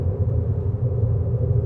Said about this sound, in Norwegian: Det høres ut som en sånn påhengsmotor som står og ruller her et eller annet sted.